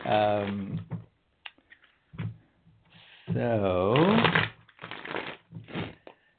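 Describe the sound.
A deck of cards is shuffled in several quick, crisp riffling bursts, interspersed with brief humming or vocal sounds from a voice.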